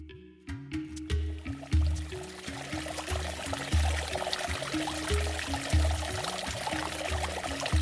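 Liquid is poured out as a libation, steadily for several seconds, with a continuous splashing stream and low, rhythmic glugging underneath as it flows out of the container. No one speaks.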